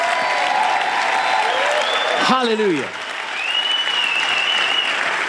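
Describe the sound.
A worshipping audience claps loudly and steadily throughout, a dense, continuous wash of applause, with a single voice calling out briefly over it partway through.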